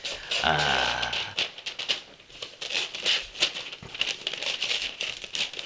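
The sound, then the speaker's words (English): Wrapping paper crinkles and rustles as it is folded over, a steady run of dry, crackly scrunches, with a brief voice sound near the start. “He's folding it over. Yeah, he's folding it over.”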